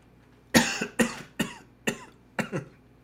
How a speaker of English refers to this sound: I'm coughing because I can't pronounce that. And I have an itch in my throat.